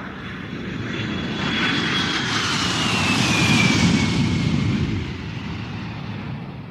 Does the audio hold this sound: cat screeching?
no